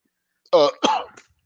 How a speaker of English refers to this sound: Excuse me. There's a reason I'm coughing. There's something I've done about it.